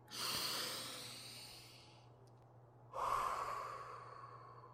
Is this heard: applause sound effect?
no